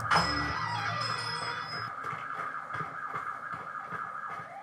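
An ambulance siren wails steadily throughout as an ambulance and three police cars head to Jeremiah's farm, its rising and falling tone fairly loud, with a low rumbling hum at the start and faint clatter in the background. No one speaks.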